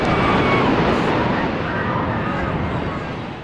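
A massive, thundering roar of the South Tower collapsing, a dense, continuous rumble loud throughout, easing off slightly toward the end.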